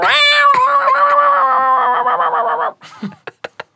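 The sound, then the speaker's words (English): A person imitates cats fighting with a loud, sustained, wavering yowl for nearly three seconds, then a few short raspy hisses and spits in quick succession. “I have a cat fighting impression.”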